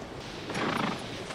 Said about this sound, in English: Got yourself a new horse?